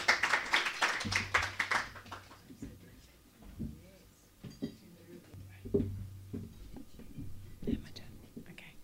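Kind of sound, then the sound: crowd, audience round of applause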